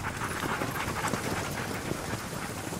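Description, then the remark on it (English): A team of sled dogs pulling a sled, appearing from woods into a clearing during a night race at 27 degrees below, pants steadily, a dense, continuous rush of quick breaths with faint rustling and wind in the background. “From the woods at the side of the clearing we're in, a team of dogs appears.”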